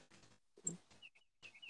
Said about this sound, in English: What? Are there birds outside?